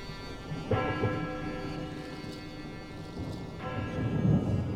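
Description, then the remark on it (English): A town bell in Anvers tolls twice from within the town as storm clouds gather, each strike ringing out with a long, humming decay, set against a low, rumbling backdrop like thunder and stormy weather. “It moved quickly, keeping ahead of the gathering storm clouds, and slipped onto the muddied road just as a bell began to toll out from within the town.”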